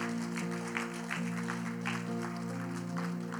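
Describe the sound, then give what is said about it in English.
A church audience applauds during a service in a steady wash of clapping, with a few louder bursts rising out of it over a sustained, low musical drone. “You got to make some noise for him.”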